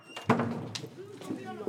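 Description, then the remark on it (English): Someone knocks on a classroom door after hearing a teacher raise her voice, to pull two fifth-grade boys out: a solid rap followed by a couple of softer taps, while voices murmur in a hallway. “Barnes hears a teacher raise her voice, and he knocks on the door, pulling 2 fifth-grade boys out.”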